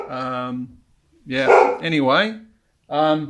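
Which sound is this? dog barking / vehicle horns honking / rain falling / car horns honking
dog barking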